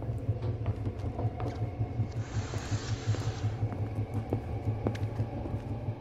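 A train rumbles steadily with a deep, droning hum as it slows into a station, and a loud burst of hissing air rises briefly midway. No one speaks.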